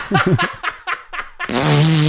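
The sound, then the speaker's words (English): A queef: a sustained, buzzy, low-pitched flatulent sound that runs for about half a second at the end, following a quick series of short rhythmic bursts that resemble laughter. “It's a queef, if you guys didn't get it.”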